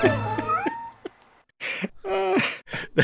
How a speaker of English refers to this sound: He's like, hey guys, look at this bag I've got. It's got some cats in it. Let me show you. Meow, meow, meow, meow. Oh my God, who let all these cats out of the bag?